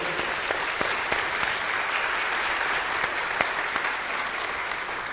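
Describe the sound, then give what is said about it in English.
An audience applauds those who worked at a singer's concert, steadily for several seconds, a dense, even wash of many hands clapping at once, with a few sharper individual claps standing out. No one speaks. “I just want to applaud all those who worked.”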